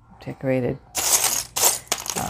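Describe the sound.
Small decorated metal paper clips clink and rattle together in several bright bursts of handling, following a short voiced sound at the start.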